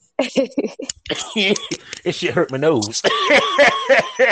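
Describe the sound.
Loud coughing after taking a hit, in a series of harsh bursts, mixed with wheezy chuckles and voiced sounds, with barely a pause over about four seconds.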